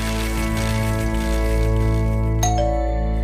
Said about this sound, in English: I was asleep and I just moved into a new flat by myself, and so to find my doorbell ringing, and I didn't even know what the sound of my doorbell was because I just moved in.